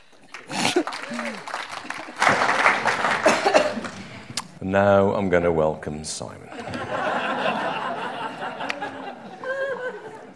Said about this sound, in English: Give them a good big round of applause. Have a great time.